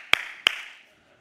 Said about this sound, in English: Or we make distractions. We start clapping. Hey, hey, Boone. Hey, hey.